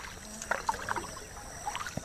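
The river of Fing in Ghana flows in a steady, hissing wash, broken by a handful of soft splashes and gurgles at irregular moments. No voices are heard.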